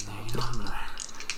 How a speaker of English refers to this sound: He shakes the dice. He gives it some guts and glory.